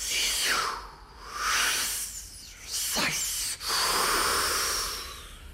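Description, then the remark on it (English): A clear voice imitates sea waves lapping against low rocks with four drawn-out hissing, whooshing sounds, rising and falling like surf, with brief pauses between them. “Listen, a four-worded wave speech.”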